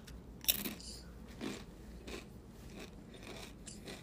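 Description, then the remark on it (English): Crunchy chewing with a sharp bite near the start, then several softer, irregular crunches spaced about a second apart against quiet background hiss. No one speaks. “Also, ignore the chewing.”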